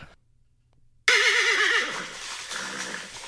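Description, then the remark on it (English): After a second of near silence, a horse lets out one loud whinny with a quavering, wavering pitch that trails off into breathy snorting noise. “That's horse talk.”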